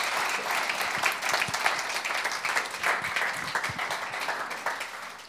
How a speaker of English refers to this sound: Fantastic, isn't it? That is great, isn't it? Give a round of applause, isn't it?